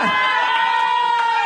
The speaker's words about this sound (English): That was the first cheering for Bumble I've ever heard in my life.